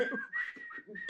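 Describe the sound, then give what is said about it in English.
A short whistled signal tune of a few sustained, clear notes, moderately loud, with a faint murmur of voices underneath; a signal whistle like in the Hunger Games. “Do we got a whistle like the Hunger Games or something?”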